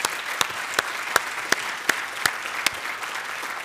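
An audience gives a clap offering to God, a dense wash of applause punctuated by sharp, regular beats roughly every third of a second, steady and fairly loud with no voices over it.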